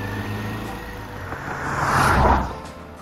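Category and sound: vehicle, car driving off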